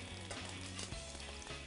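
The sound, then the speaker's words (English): Food frying in oil in a preheated pan, pieces turning golden brown and crispy and sliding without sticking: a steady dense sizzle with crackling and faint scraping as pieces shift, continuous and even in loudness with no voices. “And you see how they're just sliding in the pan and they're not sticking?”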